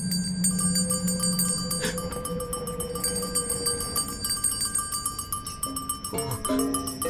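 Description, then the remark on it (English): Many bells in a house ring at once in a dense, overlapping wash of sustained metallic tones at several pitches, holding steadily for several seconds with new strikes adding in near the end. “And so did every bell in the house.”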